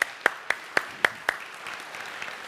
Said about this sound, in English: Someone said, I wanted to clap for that. You can clap for that.